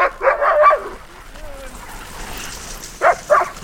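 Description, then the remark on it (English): Several sled dogs in harness, hooked up to a guy line before a training run, leap about and bark in quick overlapping bursts, fall quiet over a faint outdoor hiss, then two more sharp barks ring out near the end. “They're hooked up to the guy line, leaping in the air, banging on their harness. It's like this chaotic symphony rising up to a crescendo.”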